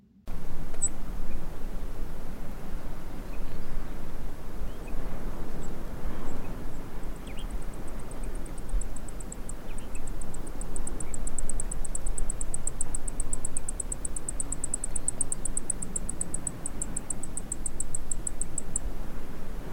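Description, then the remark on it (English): A female Brewer's Sparrow gives a soft, high twittering call, a rapid run of thin repeated notes lasting several seconds over steady outdoor background noise. “Females also give a soft twittering call.”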